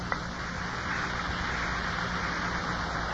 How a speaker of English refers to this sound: This blue taffeta dress, my favorite. I used to love the rustling sound it made when I wore.